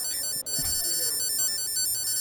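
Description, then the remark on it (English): A phone plays an electronic chime as it powers on: a sustained, bright, bell-like tone that holds steady for a couple of seconds, with a brief break near the start and soft background noise. “I got 84 text messages since I last turned this phone on.”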